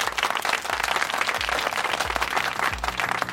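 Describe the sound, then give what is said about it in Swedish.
Steady audience applause fills the whole stretch, a dense wash of many hands clapping at once, fairly loud and continuous with no voices on top. “Tar upp glaset och skålar för huvudpersonen och så tar du emot applåderna.”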